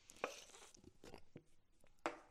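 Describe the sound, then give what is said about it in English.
Someone sips coffee, with a few sharp clicks and soft clunks around a brief, breathy slurp. The sounds are quiet and there is no talking. “And I'm stoked because today I'm the guy with brown teeth because I've had so much coffee because I've just been fired up to record podcast episodes as I take another sip.”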